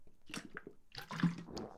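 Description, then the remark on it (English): Quiet wet sounds of someone sipping water, with a few soft slurps and a gulping swallow over about two seconds, no talking. “Another drink of water.”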